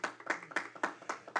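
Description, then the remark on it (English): A church audience at a Wednesday night service applauds itself, clapping together in a steady, fairly quick rhythm, each round of hands landing as a bright, sharp burst with a brief ragged tail. The clapping is moderately loud, with no voices. “So give yourself a hand. That's to be applauded.”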